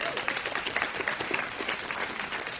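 audience applause

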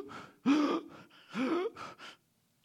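sharp gasp

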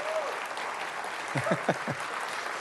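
audience applause

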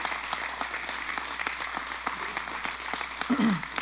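audience applauding

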